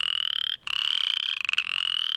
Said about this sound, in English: Other frogs, out in the lowlands, in the agricultural lands, you would encounter chorus frogs.